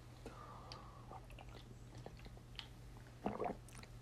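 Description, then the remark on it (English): Someone drinking water: faint wet mouth clicks and soft swallowing sounds over a low hum, then a short, louder gulp near the end. No one speaks. “I'm drinking water.”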